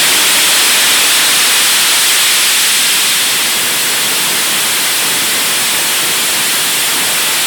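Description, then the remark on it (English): Pink noise plays alone as a steady, unbroken hiss, evenly loud from start to finish, with a deep, full rush like rain or a waterfall and no other sounds. “This is what pink noise sounds like.”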